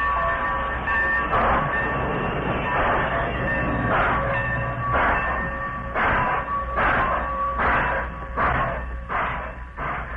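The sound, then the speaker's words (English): A train pulls out of the Modoc City station, its loud rhythmic chuffs picking up pace over a steady mechanical hum, with no voices. “The engineer obeyed, and the train moved out of the Modoc City station.”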